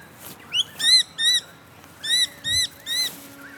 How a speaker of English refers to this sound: The noisy miners have woken up. Hello, noisy birds.